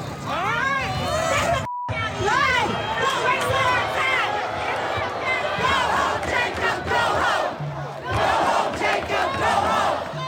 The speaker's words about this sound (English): Booed by the crowd. And they started screaming shame, and it was like something out of a scene from Game of Thrones.